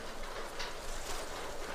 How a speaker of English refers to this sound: Okay, I've made it here to this barn. And if life were a story, this would be the cliche where I made it just in time and the rain starts to fall just as I make it here.